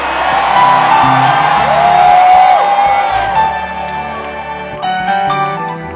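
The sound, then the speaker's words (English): A large church audience shouts and cheers together in a sustained, loud roar, with a woman shouting at the back and individual voices whooping out above the din. “I like the lady who is shouting at the back there.”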